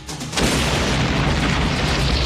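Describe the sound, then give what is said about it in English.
A loud bomb explosion in the trailer for the film The Last Boy Scout erupts after a brief quieter moment, a deep booming blast that sustains as a dense, roaring rumble for about two seconds without any voices. “That was a bomb?”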